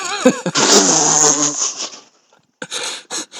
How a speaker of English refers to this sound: Did you just blow your nose into a chihuahua?